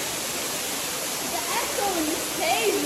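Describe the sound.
A waterfall roars steadily, its dense, hissing rush of water filling the whole clip, with faint voices briefly rising beneath the noise toward the end.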